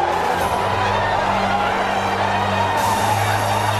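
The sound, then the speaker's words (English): A large crowd at Metropolitan Stadium roars and cheers without pause after the Minnesota Vikings win the National Football League championship 27-7, a dense, loud wall of voices with a few steady tones running underneath, holding at the same level throughout. “And it's nothing but pandemonium here at Metropolitan Stadium.”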